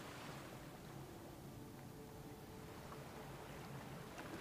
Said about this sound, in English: feel that calmness come over you as you hear the rhythm of the waves crashing.